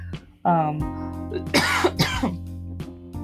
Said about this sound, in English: not COVID, I swear. But, okay. Really? So I'm just going to cough.